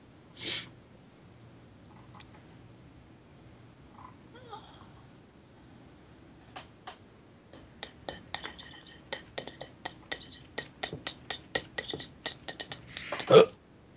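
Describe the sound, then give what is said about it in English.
A short burp sounds near the start. Quiet clicking, like keys or a mouse, fills the later seconds, and a second, louder burst comes right at the end. “No, I burped.”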